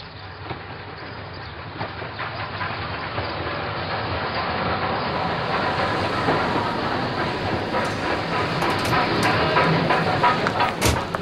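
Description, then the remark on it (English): A train to Leningrad rolls steadily along the rails with a continuous rumbling roar and faint rhythmic clatter, fairly loud, growing slightly stronger toward the end. “The student arrives in the Leningrad train station.”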